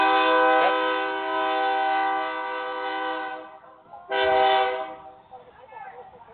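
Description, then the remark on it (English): A loud, sustained train horn blares for several seconds, drops away briefly, then sounds again in a second long blast before fading into the rumble of a passing freight train, apparently an oil or sand train, one of 50 to 60 freight trains a day passing the Garden Railroad in Rosenberg. “that's just one of the 50 to 60 freight trains a day that we have go by here.”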